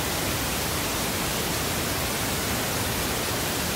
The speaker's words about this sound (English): Now let's go 1 step above with the pink noise. See if we can still just barely hear the tinnitus, but we can hear the pink noise in the background.